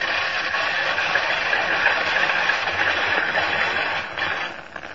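A hand-cranked rain-making machine runs with a steady, dense rushing hiss like heavy rainfall, holding constant for several seconds before easing slightly at the end. No voices are heard.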